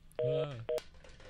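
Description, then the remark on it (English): Two telephone keypad tones beep in quick succession while someone tries to end a phone call, the first held for about a quarter second and the second shorter, both clear against a faint background hum. “All right, well, we know how to work the phones. I don't know how to drop the call.”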